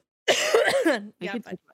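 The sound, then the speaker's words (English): A sick person gives a long, rough, voiced cough followed by two short throat-clearing bursts, fairly loud, with no one speaking. “So sorry for all of the coughs and my sickness.”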